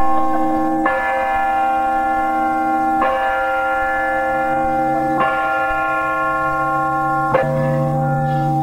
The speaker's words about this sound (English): And we were a little surprised to hear the bell strike noon as we were coming up the staircase. I don't think it shook anybody off the stairs